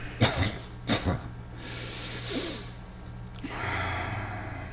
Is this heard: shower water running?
no